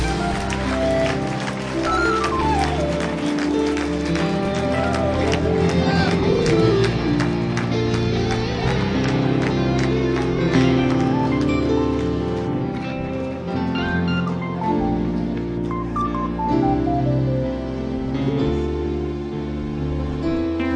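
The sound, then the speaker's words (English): A church audience applauds and cheers for a sustained stretch, giving the Lord a hand clap of praise at an evening service, steady dense clapping with shouts mixed in, while music plays underneath. “Why don't we give the Lord a hand clap of praise in this house here tonight?”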